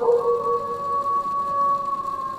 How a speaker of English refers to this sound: Ooh, what the hell? Ooh, probably just some dogs that got startled by all that thunder and lightning. Well, I guess I better go and check this out.